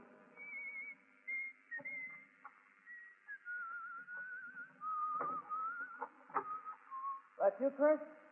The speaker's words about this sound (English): He doesn't whistle that well.